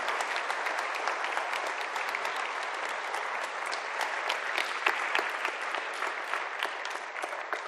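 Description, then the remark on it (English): A crowd claps steadily for several seconds in appreciation of a woman who told her life story, a dense, even wash of applause with sharp individual claps popping through, sustained at a fairly strong level without any speech over it. “can we appreciate her? Just clap and hold on.”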